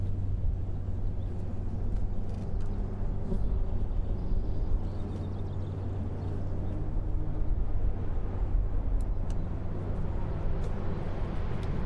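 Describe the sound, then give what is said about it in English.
A low, continuous roar of racing cars on a circuit, slowly getting louder as they come by: the course car (an Audi R8), Jaguars, a Dino and a Ferrari. A steady engine rumble in the background swells slightly at moments, with no one speaking. “If you listen now in the background, you can hear cars slowly getting louder.”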